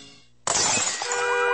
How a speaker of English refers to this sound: Do you have another brick through your window? Or still unlucky from that broken mirror in your house?